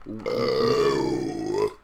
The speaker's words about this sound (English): Son, how did you howl while burping? That was offensive.